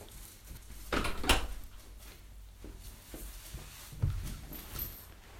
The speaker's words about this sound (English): I'm just going to close the door because can you hear someone like chopping outside or something?